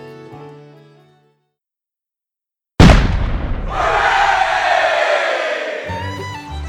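A single loud cannon blast, fired from a keelboat on the river west of the Mississippi to celebrate July 4th, the nation's 28th birthday, booms out after a quiet pause, followed by a rolling roar and what sounds like a crowd cheering as the echo fades.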